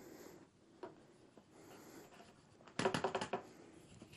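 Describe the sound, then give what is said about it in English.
Whole wheat flour pours into a bread machine with a soft, dry rustle, then a quick burst of sharp pattering taps as the last bits are shaken out. No one speaks. “So this is whole wheat flour. So now we pour it in our bread machine.”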